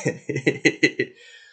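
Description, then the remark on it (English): A rapid fit of about six short coughs from a person with a chronic cough, in an even rhythm and fairly loud, each burst fading quickly, trailing off into a faint breathy tail. “I'm not sick. I have a chronic cough.”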